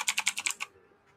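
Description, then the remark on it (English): A quick, evenly spaced run of about seven sharp, clacky keystrokes on a black mechanical keyboard, crisp, ending abruptly into near silence. “This is a mechanical keyboard, ain't it?”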